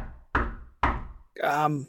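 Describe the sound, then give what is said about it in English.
Two unhurried, gentle knocks on an ornate wooden front door, evenly spaced, followed immediately by a short burst of voice. “Very gingerly kind of just knock on the front door.”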